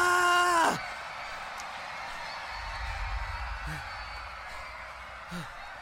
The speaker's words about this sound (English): Wait, why is there screaming? What's happening?